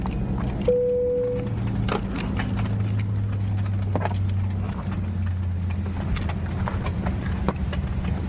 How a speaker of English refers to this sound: Once that happens, you can hear the collective clicks of seatbelts unbuckling and passengers getting up to retrieve carry-ons from the overhead compartment.